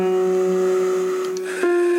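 Two sustained piano notes ring together a major seventh apart, a steady, slightly dissonant interval held for about two seconds with a brief shift near the end. No one speaks.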